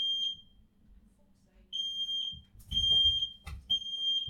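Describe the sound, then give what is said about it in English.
A shrill, high-pitched home fire alarm beeps in repeated bursts, fairly loud, with some low rumbling and muffled movement in the background. “I think that my fire alarm's going off.”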